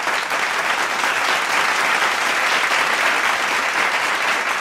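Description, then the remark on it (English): Steady, dense applause from a group of people, a continuous crackle of many hands clapping at an even, fairly loud level for several seconds, with no talking over it, celebrating news of a cousin's engagement. “We got to clap it out, you know.”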